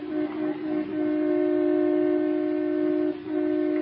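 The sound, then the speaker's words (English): A car horn blares loudly and insistently as Mr. Bullard tries to get his car out of his driveway, which another car is blocking. It holds one steady, buzzy pitch in long blasts broken by a few brief gaps, with no one talking over it. “Oh, let him honk, the big goose.”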